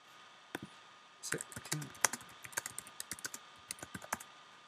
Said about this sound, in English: I could hear you typing just now.